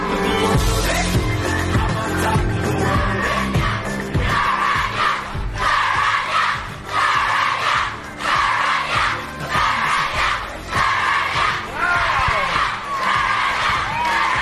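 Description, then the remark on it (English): A crowd of about 600 people shouts a quiz winner's name together at the Kids Quick Quiz on East Coast Breakfast, in loud, rhythmic chants, the repeated call rising and falling in bursts about once a second over a constant roar of voices. “when was the last time you heard 600 people shouting out your name?”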